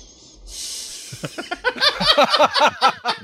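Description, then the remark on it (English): Sylvester Stallone does a long, hissy nasal sniff that gives way to a quick run of squeaky, whistling pulses with a bouncing pitch, repeating in an uneven rhythm for a couple of seconds. “Oh, here's Sylvester Stallone doing a long sniff and a whistle, and I captured it.”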